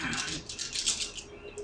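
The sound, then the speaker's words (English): Dice rattle and clatter in a steady stream of quick, bright clicks for under two seconds, with a faint murmur of voices underneath. “What are you rolling dice for? You're just rolling dice.”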